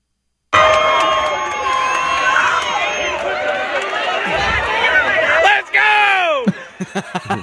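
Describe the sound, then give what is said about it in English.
A loud crowd roars and cheers continuously as a man cheers it on, dense overlapping voices and shouts, swelling near the end before breaking into a few short bursts of yelling. “He's cheering the crowd. The crowd's going.”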